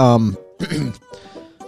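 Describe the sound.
A few throaty, voiced coughs in quick succession, fairly loud, the first burst strongest and the later ones trailing off more softly.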